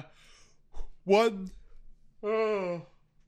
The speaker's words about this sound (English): God, I'm so yawning.